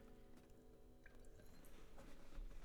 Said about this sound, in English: I'm going to take another sip of water really quick.